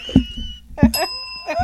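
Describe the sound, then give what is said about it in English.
Two quick, bright rings of a bicycle-style bell, fairly loud, each strike leaving a clear metallic tone hanging briefly before the next. “Ring the bell. I expect that every time.”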